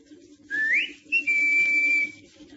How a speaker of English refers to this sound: I don't see your friend. No, he's not in the car. Must be nearby somewhere. Well, I'll give him the whistle.